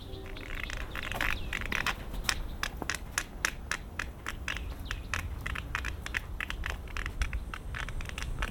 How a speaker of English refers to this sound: The cane tip makes a little sound, and that's echoing, and that's what I hear, actually.